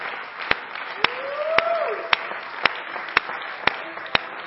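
An audience at a worship service claps hands in steady unison to the Lord, about two sharp claps per second, over a murmur of voices and a rising, singing-like tone.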